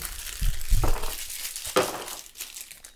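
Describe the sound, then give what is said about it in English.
A food wrapper crinkles and crackles in irregular bursts, with a few soft low thumps early on and a sharper crackle midway; no one speaks. “Stop crinkling, fucker. Open the wrapper all the way so you can eat, grab and go.”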